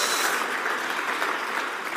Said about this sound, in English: And also, just want to say thank you to the choir and our music team as well. Let's give them a big clap for their hard work as well.